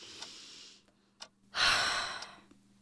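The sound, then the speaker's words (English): A person takes a calming breath: a slow, audible breath drawn in, a brief pause, then a long, full exhale that swells and fades away, clear with no talking. “Take a breath.”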